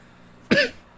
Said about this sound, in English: I'm sorry I keep coughing, guys.